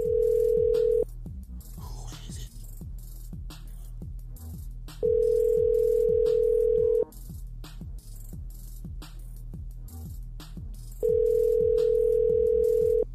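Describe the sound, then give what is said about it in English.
A phone call rings out unanswered: three loud, steady ringback tones, each a second or two long and separated by several seconds of pause, over a low, rhythmic background thump. “Well, she's probably watching, like, hit ignore because she's watching the show.”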